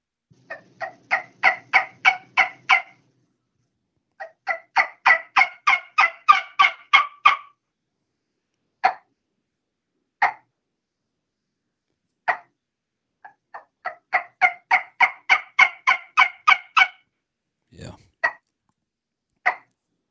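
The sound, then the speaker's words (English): Turkey calls played on a yelper and a trumpet call, heard over a cell phone: three quick, rhythmic runs of raspy, high yelps, each about a dozen notes, separated by a few lone, spaced-out single yelps. “if you got a call, a yelper handy, a trumpet call handy, I don't know how it's going to sound up next to the phone, but yeah, you may have to step back away from it or whatever, but man, give us a little medley of sounds here on what you got.”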